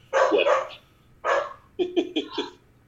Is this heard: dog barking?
yes